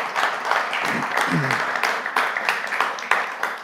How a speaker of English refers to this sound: Yes, please applaud.